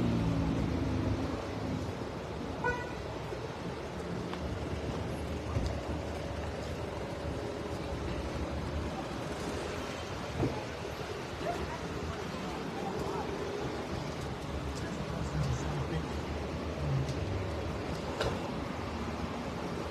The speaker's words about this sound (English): Here comes the tow truck.